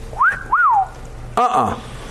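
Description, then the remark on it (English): A person whistles an imitated catcall, a two-part wolf whistle: a quick upward slide, then a longer rise-and-fall swoop, clear and fairly loud, followed by a brief voiced sound. “There's the whole catcall thing.”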